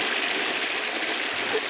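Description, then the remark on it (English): A toilet being given a triple flush, a steady rush of water that holds at an even loudness for the whole moment, with no voices over it. “Okay, this is a triple flush.”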